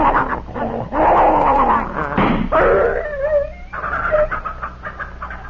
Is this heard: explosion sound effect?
no